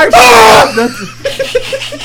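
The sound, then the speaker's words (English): A sudden, piercing human scream, as if at a T-Rex, blasts for about half a second, loud enough to distort and peak every microphone in the room, then gives way to soft, breathy chuckling. “That's you peaked every single mic in the room.”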